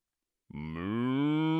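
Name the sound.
cow mooing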